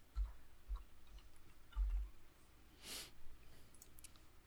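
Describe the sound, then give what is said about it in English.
Faint, scattered clicks and soft knocks, like small dice tumbling and settling on a hard surface, with a brief rattling burst near the end and no voices. “Why'd you even roll that four? Sorry, I was trying to get all set up with the dice.”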